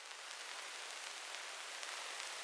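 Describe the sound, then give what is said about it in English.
Synthesized vinyl crackle and tape hiss, added over an old garage tune to make it sound like vinyl: a steady, soft, bright hiss with faint, scattered crackles and pops sprinkled irregularly throughout, with no voices or music. “So, you know, again, I just don't feel like an old garage tune is finished unless it's got a bunch of tape hiss and crackle over the top.”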